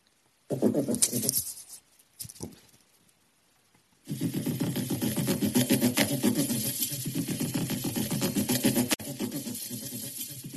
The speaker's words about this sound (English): But in fact, this one's called a paddle crab. That's a type of crab that lives off on the beaches of Australia.